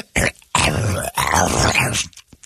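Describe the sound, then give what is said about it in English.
Loud grunting and snorting noises from someone noisily eating pizza, like a dog wolfing down food, in three rough bursts over a couple of seconds, with no clear words spoken. “eating all that gross pizza. Sounds like the dog.”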